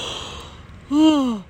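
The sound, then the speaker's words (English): A person yawns once, breathy noise giving way to a voiced tone that swells and then sinks in pitch before trailing off. “Sorry, I keep yawning.”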